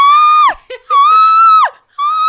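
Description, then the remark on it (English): A voice imitates someone screaming while vomiting: two long, loud, high-pitched strained wails that sag and break off, with a short gurgling retch between them and a third wail starting. “Well, they threw up screaming.”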